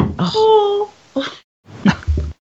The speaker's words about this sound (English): And in the following room, you hear the sad sobs of children.